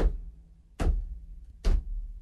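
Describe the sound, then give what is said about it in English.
Two heavy, dull thumps of a head banging against a hard surface, a little under a second apart, with a low hum in between and no talking. “Sorry, got to bang my head on that.”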